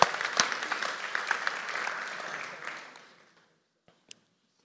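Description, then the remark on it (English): A church audience applauds itself for its work as a church, a dense patter of many hands clapping at steady volume for about three seconds before fading out, followed by quiet and a couple of faint clicks. “And so I just want to give you, could we give ourselves a round of applause for what we do as a church?”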